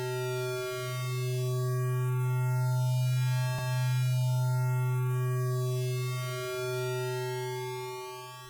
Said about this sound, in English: Out on the balcony, the box set up a gentle hum.